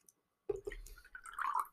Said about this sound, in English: Honestly, it's like kind of like a little fun little surprise in it too. The little chunk as you're drinking. I'm gonna go ahead and give the strawberry lime a swig.